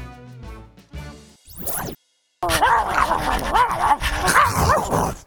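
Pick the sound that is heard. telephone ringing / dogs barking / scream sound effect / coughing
dogs barking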